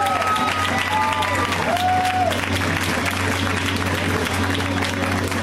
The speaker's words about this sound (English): Thank you. Round of applause